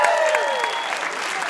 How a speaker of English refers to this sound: so another round of applause